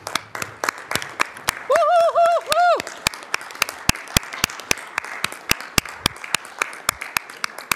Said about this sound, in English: So if you're in cohort perfectus or cohort alpha, which was the first cohort name, or you serve as a mentor, I would like you to stand up. And so that way you can get the applause you deserve.